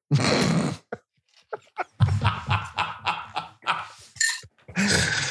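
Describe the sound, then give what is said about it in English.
A dog growls and barks: a long rough snarl, then a quick run of short, harsh barks, ending in another drawn-out growl. No one talks. “It is a cute dog.”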